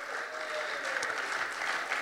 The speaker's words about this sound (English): Give him a clap. Come on, this guy's brave tonight.